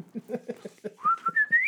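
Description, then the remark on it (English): A boy whistles a short rising tune, clear, with a soft rhythmic patter underneath before the whistle glides upward in a few quick bursts. “Get that whistling boy in here.”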